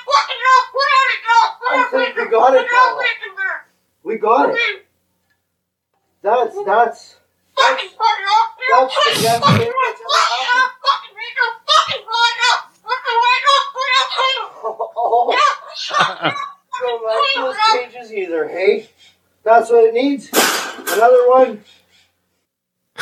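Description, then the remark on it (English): A full-grown cockatoo perched on a beam talks and curses in a raspy, high-pitched imitation of a human voice, delivering loud bursts of chatter separated by short pauses, with some giggle-like squawks mixed in. “The bird was cursing a lot, and he said the N-word.”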